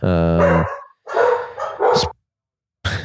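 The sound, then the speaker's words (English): Several loud dog barks: a long harmonic bark, then a pair of sharper yips and another bark after a short pause. Nobody is talking. “The dogs.”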